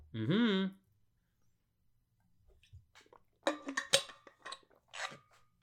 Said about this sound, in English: Okay. I'm going to take one more sip of water.